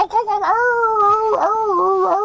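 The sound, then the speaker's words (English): Someone imitates a coyote howl with one sustained, wavering, high-pitched wail lasting a couple of seconds, loud, its pitch dipping and rising in yips before fading out. “Some wind blowing in a every wild week. West town somewhere. And a little coyote goes in the background.”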